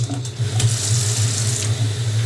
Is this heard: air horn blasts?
no